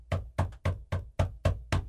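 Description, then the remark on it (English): Seven quick, evenly spaced, sharp knocks on a door made by a squirrel, rapping at a steady pace with no voices in between. “I go, look, there's a squirrel knocking on the door with this, "Where's my crepe?"”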